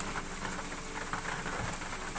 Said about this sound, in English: Hello, it's too rainy today.